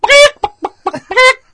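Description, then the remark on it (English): A person imitates a chicken, loud: a drawn-out squawk, three or four quick clucks, then another stretched squawk, with no other sounds around it. “I could do a little bit here and like all like I could do chicken.”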